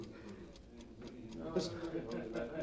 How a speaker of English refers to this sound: What's that? What's what? What's that? That clock ticking. Where is it? Clock? There ain't no clock ticking in here. There is! Listen, guy, you had a couple too many, I guess. Look, I can hear it, I tell you. It's ticking, ticking, ticking.